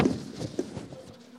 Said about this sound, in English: On your papers, on your outlines, on the back of it, go ahead and grab those outlines for me. Oh, I hear a lot of paper moving.